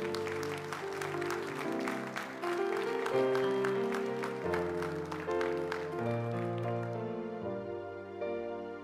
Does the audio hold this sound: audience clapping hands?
yes